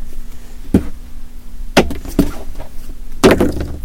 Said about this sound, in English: Oh, listen. Well, knock, knock, knock.